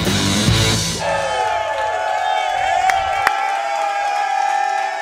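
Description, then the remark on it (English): A loud, excited sold-out crowd at the Hy-Vee Market Grill on 119th Street in Olathe, at the Kansas City Chiefs Kingdom Show, cheers and whoops continuously, with high shouts and rising calls layered over a dense wash of voices and a brief burst of clapping early on. “What a great crowd here tonight.”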